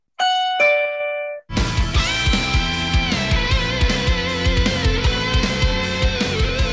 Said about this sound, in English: The doorbell is usually D major.